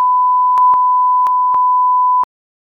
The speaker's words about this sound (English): Can you leave this in so I can just put a huge bleep over it?